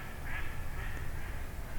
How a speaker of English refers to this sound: Oh. Some mallards, I think. Yep.